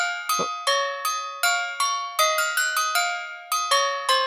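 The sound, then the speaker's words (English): A doorbell chimes over and over, about a dozen bright, ringing bell strikes in a quick, slightly uneven rhythm, each tone lingering briefly before the next. No voices are heard. “Do I hear a doorbell?”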